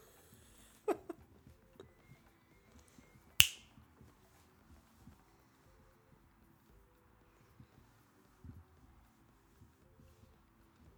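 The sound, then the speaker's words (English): A single sharp hand clap rings out loud, preceded by a fainter click a few seconds earlier, with no one speaking. “Clap.”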